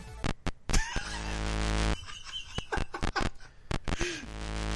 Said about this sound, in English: So the first game, you were like... That the whole game soundtrack sounds like interference in my speaker. Yes. Like your Commodore 64 has indigestion.